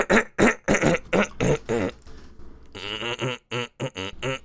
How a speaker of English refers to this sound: I don't know why I did the Little Mermaid when I was clearing my throat, but it happened.